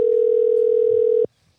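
A single steady, loud electronic ringing tone of an outgoing phone call to a guest from Mini Schlagen, sounding for just over a second before cutting off abruptly into near silence.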